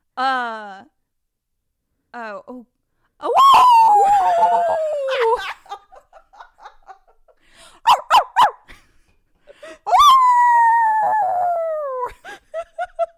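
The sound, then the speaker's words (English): A woman imitates a wolf, evoking the Wolfman, letting out two long, loud, gliding howls that slide downward in pitch, with short yelps, breaths and brief bits of voice in between. “living her best Wolfman.”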